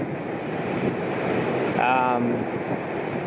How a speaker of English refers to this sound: The wind gusts here are getting pretty significant. This is going to be our closest approach right now. Huge gusts coming through. Wow.